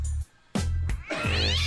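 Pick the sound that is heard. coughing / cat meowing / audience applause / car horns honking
cat meowing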